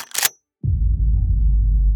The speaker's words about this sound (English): I knelt to plug the refrigerator back in when I suddenly heard the sound of a shotgun being racked.